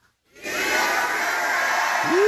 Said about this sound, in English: So when I point to you, I want you to yell as loud as you can, "He is risen," and we'll go through this twice, all right? So you ready, section one? Here we go.